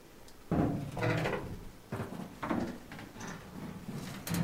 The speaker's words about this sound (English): mostly you, Cable, especially, can hear banging on the walls. Like, from inside the walls, it kind of sounds like...